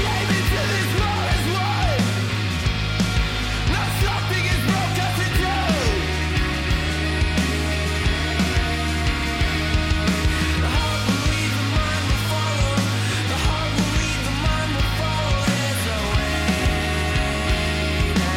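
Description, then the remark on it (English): The closing track of an album plays, loud and dense, steadily throughout, with a heavy sustained bass line, layered instruments including guitar and a constant driving energy; no one talks over it. “Last track of …”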